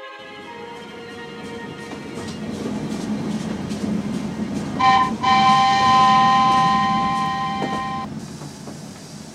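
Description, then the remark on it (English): A train rumbles in steadily, then its brakes let out a loud, sustained metallic squeal for several seconds as it slows, with the heavy rolling noise easing off near the end; Mr. Ernest Weston's train arriving. “After that, we meet Mr. Ernest Weston's train.”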